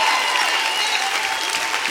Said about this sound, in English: Come on, clap your hands.